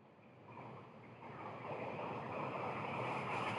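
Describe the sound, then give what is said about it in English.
Brown noise: a steady, dense rushing hiss like a waterfall, swelling slightly louder over a few seconds, with no voices or other sounds. “Right, that's brown noise.”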